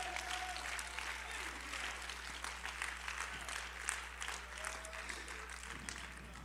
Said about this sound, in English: Is anybody hungry today for the things of God? Would you give God a hand clap of praise today?